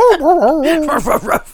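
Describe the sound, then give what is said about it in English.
A dog whines in a high, wavering tone, then lets out three or four short, sharp yips in quick succession, fairly loud. “The dog night sounds. Not usable audio.”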